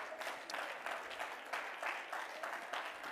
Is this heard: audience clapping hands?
yes